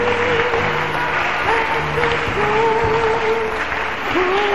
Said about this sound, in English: Keep clapping for them.